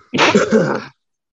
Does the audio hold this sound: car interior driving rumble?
no